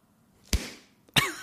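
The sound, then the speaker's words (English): A massive science textbook slams shut twice, each a sharp, heavy, booming thud with a short fading tail. A soft whoosh of air rises just before the first slam, and nobody speaks. “Here, let's see if you can hear how big it is based on the sound when it closes.”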